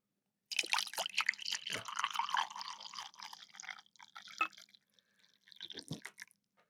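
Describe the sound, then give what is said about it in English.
Coffee from Parallel 49 in Vancouver pours into a cup, a steady splashing trickle for several seconds, then a short second pour after a brief pause. No one speaks. “Coffee. There you go.”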